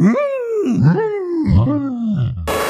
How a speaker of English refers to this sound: Yeah, also, for anybody who watched the Gen 1 anime, if you know that stock cow sound effect, or like angry bull sound effect, it's like the yeah. that get used as every show. That's all Tauros' cry is in the anime.